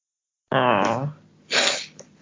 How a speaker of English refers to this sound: Listen to you sniffling still.